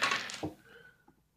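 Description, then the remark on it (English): A quick burst of rattling as dice tumble, then a sharper clack and a couple of faint ticks as they settle, rolling a six. Fairly quiet, with no voices. “I really did roll a six, though.”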